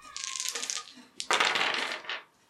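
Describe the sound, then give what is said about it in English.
Three dice rattle and clatter across a hard surface in two quick bursts, a short shake followed by a louder tumbling roll that settles after about two seconds. “So I will go with three dice.”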